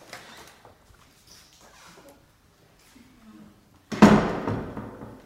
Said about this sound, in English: And it's sort of another big surprise, because you come in up the stairs and you go through these double wooden doors into the community room. Nice. I'll open them for you.